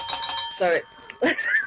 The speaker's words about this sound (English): Or is this the sign that things are about to get better? The crab bell makes everything better.